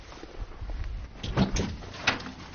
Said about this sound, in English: Give it a... That was not a loud knock.